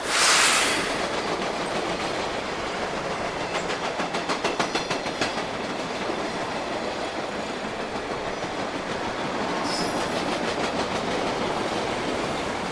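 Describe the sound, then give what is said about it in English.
A train rolls past on railroad tracks, a steady, loud rumbling roar with a burst of rhythmic wheel clacking partway through, then continuing noise as it carries on. No one speaks. “It was a wooden shack, slightly back from the railroad tracks.”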